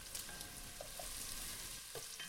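vegetables sizzling

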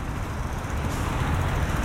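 street traffic

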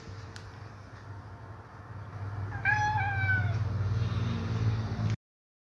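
cat meowing

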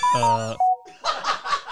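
phone ringing or notification

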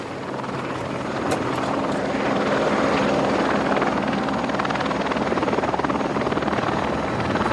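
helicopter in flight

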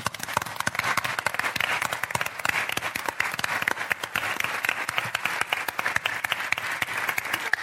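audience applause

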